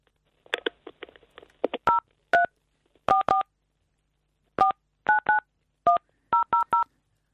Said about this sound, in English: You're dialing our number again. Why do you keep calling our phone number? Hello, Talk Radio. He's dialing. You can hear him dial.